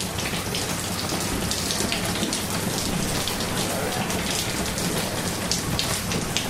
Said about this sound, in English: It was just like pissing it down with rain. At one point, I actually just stood there and gathered some atmospheric audio because I thought it was just quite nice to hear the dripping.